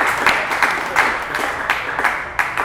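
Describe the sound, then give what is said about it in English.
A crowd applauds steadily as the first performer is called to the stage, a dense wash of many hands clapping with a few sharper bursts standing out, sustained and fairly loud throughout with no voices on top. “We are clapping up our very first performer”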